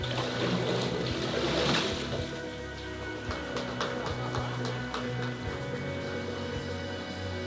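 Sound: water splashing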